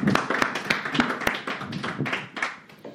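An audience applauds, a steady patter of many hands clapping at a moderate level for a few seconds, with sharper individual claps standing out and no voices over it.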